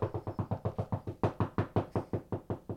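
Rapid, steady knocking on a wall, around sixteen even raps in under three seconds, each a dull thud with a hard attack. Moderately loud, with no voices.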